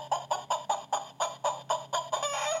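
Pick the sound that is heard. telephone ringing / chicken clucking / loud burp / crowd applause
chicken clucking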